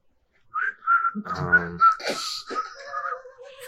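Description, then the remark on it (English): Someone whistles poorly for a few seconds: a wavering, breathy tone that keeps breaking up, mixed with airy hisses and a short hummed or voiced buzz midway, never settling into a clear tune. “I close the door, and I'm just leaning on the door, whistling.”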